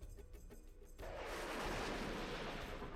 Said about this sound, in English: Booming steps blend together with the giant crash and rolling thunder as the granite bulk outlined in the white, the giant shadow illuminated for a second, moves in front of you, forcing you to stop.